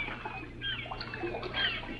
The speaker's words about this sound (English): It was late one bright sunny morning, and far out on the bay in a rowboat that was being rocked by the choppy water,